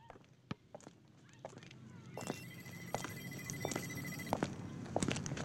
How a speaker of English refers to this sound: There was a phone ringing somewhere. I followed the sound. To my car. Under the windshield wiper was a little red phone.